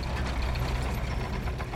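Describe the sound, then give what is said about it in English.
A heavy tractor engine rumbles steadily with a deep, throbbing low end and a faint knocking rhythm as the tractor pulls onto the road, continuous throughout, with no voices. “A tractor pulled onto the road ahead of them.”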